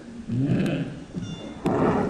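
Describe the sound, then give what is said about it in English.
A humpback whale call picked up by a hydrophone: two short, broken tonal moans with wavering pitch, heard over a steady background hiss. “But listening to them up on this coast, you would hear the hissing of the hydrophone, you'd hear other sounds in the water, and then the actual whale emission, which in this case was a humpback whale, would be kind of short or broken or inconsistent”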